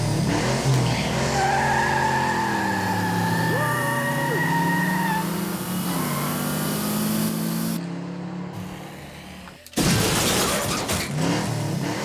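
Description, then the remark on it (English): Racing car sound effects, added to a video of children's little toy cars, roar continuously with long, rising tire squeals and engine whines, then a brief near-silent gap before a loud burst of crashing, spraying noise. “You know, my kids play with these little toy cars all the time, and I got some racing car sound effects and added them to it.”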